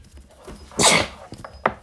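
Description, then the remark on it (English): A single forceful sneeze bursts out with a breathy hiss, followed moments later by a short, sharp sniff-like click, with no talking around it. “Keep going. One more.”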